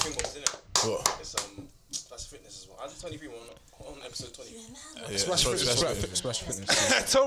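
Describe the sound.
Hands clap in quick bursts near the start, then a denser run of clapping near the end, mixed in with people talking over it.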